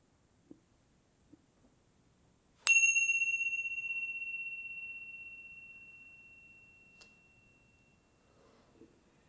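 A single bell, the second bell of a closing practice, is struck once and rings out with a clear, bright tone that slowly fades over several seconds, heard alone against quiet background with a few faint taps.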